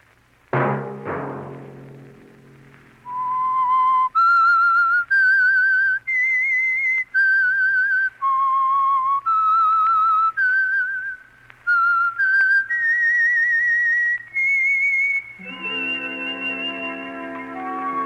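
signal or alarm, whistled theme melody

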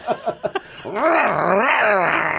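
animal, dog barking

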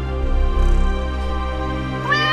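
animal, cat meowing

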